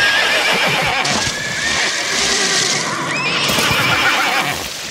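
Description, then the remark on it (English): Several wild horses, driven into a river to flush out electric eels, neigh and whinny loudly over a dense, continuous churn of hooves splashing through water. The commotion runs throughout without a pause, and no one speaks. “To catch them, locals suggested they drive wild horses into the river, which brought the eels out from the river mud and resulted in a violent confrontation of eels and horses.”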